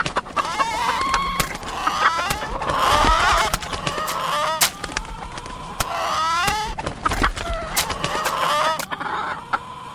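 A flock of chickens clucks and squawks in an agitated, overlapping chorus as they escape from a coop that is giving way, with scattered sharp clatters and flaps mixed in, loud throughout.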